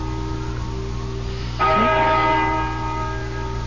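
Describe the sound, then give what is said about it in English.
A large bell tolls the hour with a single strike, its deep, resonant tone ringing out and slowly fading with shimmering overtones above a low, steady background hum. No one speaks. “Listen to that bell.”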